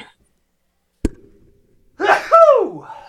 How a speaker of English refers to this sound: I'm going to sneeze.